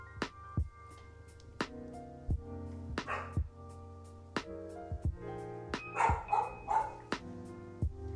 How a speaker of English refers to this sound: As my dog is barking.